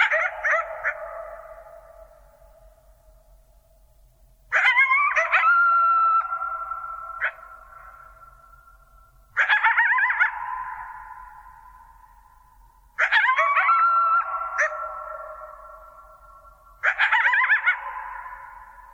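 Coyotes howl and yip in five separate bursts, each starting sharply with wavering high calls that trail off into long fading howls across a quiet, open background.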